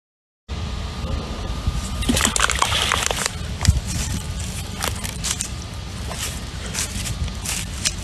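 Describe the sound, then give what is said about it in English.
A rock thrown into the water of Leslie Run creek plunks with a sharp splash, followed by sloshing and scattered drips over a steady background of running water outdoors. “As I'm going to throw another rock right here.”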